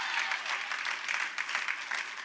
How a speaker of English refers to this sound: Come on, keep applauding if you believe it. Keep applauding if you're convinced of it. Come on, the passion is in the people.